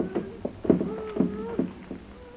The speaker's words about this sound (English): What was that? What was what? I heard it. Like a knocking. A woodpecker, probably.